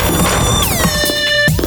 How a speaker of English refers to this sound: And just then, three cheap-looking thugs in expensive-looking suits crashed through my office door, turning the simulated wood into so much simulated kindling.